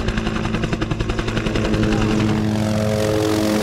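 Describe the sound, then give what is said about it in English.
A smaller helicopter in flight, out searching for the next rhino, its rotor beating in a fast, steady thump over a droning engine whine. The chop is loud at first, then smooths into a continuous roar. “Vet Dave Cooper was already up in another smaller helicopter looking for the next rhino.”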